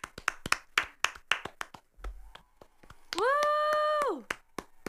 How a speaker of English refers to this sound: And I want to give a shout out to blue. Let's give a round of applause for blue.